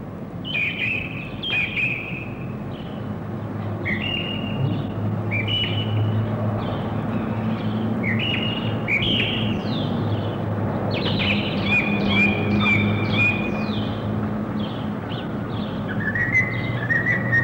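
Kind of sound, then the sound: bird, blackbird singing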